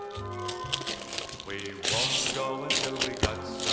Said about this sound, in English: You can just rip the paper, it's okay.